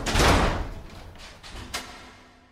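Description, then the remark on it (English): A house door slams shut with a loud, heavy bang that rings out and fades, followed by a smaller knock a moment later. No one speaks. “I stumbled into Ben's house and he slammed the door.”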